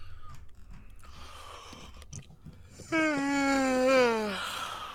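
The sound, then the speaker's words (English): A long, loud voiced yawn that swells suddenly and slides slowly downward in pitch over about two seconds, preceded by faint mouth and rustling noises. “It's a good yawn, bro.”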